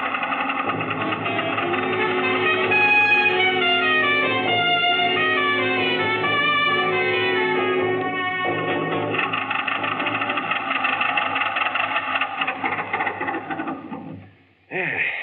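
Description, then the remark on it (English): A car engine runs steadily with a dense, droning mechanical rumble and shifting tones, fairly loud throughout, briefly cutting out near the end before returning. “Stop the car.”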